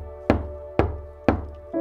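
Knocking on a door: four firm, evenly paced raps about half a second apart, fairly loud, with a faint steady hum underneath and no one speaking.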